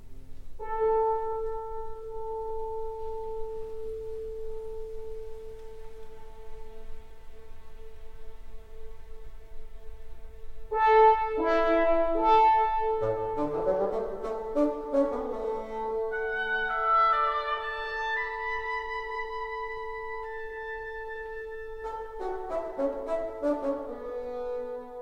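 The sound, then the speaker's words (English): An orchestral passage from Mahler's Fifth Symphony, right after the Adagietto, echoing the song Lob des hohen Verstands: it opens on a long held note, then around the middle strings and woodwinds burst in with lively, overlapping melodic figures, moderately loud and without any voices. “Then come distinct echoes of Lob des hohen Verstands.”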